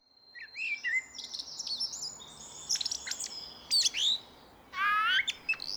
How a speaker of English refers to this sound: So I guess this isn't what you'd call blackbird song, more blackbird calls or articulations. And they were really quite crazy. And I thought I'd just share them because they're quite interesting in terms of the range of sounds a bird can make.